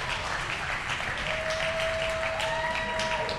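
A crowd gives a round of applause for a volunteer called up to the front, clapping steadily for the full few seconds, a dense, even wash of applause with no talking, while a thin held tone rises faintly through the second half.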